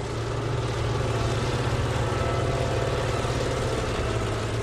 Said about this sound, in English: On a recent afternoon, trucks haul coal to a colossal storage pile at the Mountaineer Power Plant in New Haven, West Virginia.